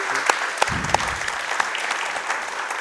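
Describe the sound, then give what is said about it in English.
A crowd applauds steadily to welcome John Worsfold as a guest. A dense wash of clapping has a few sharper individual claps standing out, with a brief murmur of voices underneath. “A big round of applause for John Worsfold.”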